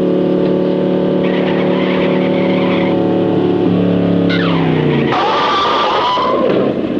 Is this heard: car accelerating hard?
yes